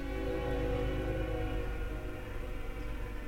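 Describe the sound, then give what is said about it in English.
A train horn blares steadily and loudly for several seconds, its sustained chord sitting over rumbling rail noise as the train passes, with no talking. “I have to wait till that horn goes by, and then we can go, right?”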